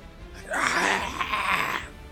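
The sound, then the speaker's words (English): A human voice imitates a griffin screaming as it is slammed in the face: one sustained, raspy, wailing shriek lasting over a second, loud and harsh with a wavering pitch, then cutting off. “You slam this thing in the face as it starts screaming.”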